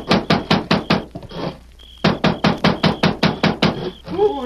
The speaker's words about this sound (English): Consequently, he was surprised one night to be roused from his sleep by a loud pounding on the cabin door.